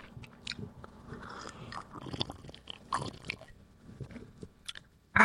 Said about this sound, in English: Maybe have a Ribena sip before we end the pod. Give us a third Ribena sip. I'll give you a Here we go, boys. We love the ASMR. Nice Ribena sip. Here we go.